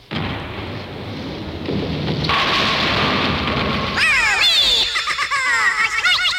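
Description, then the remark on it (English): Steady, loud rain hisses over a low thunderous rumble, and in the last couple of seconds high, sweeping giggle-like voices rise above the downpour. “Summer showers, thunderstorms, all that good stuff.”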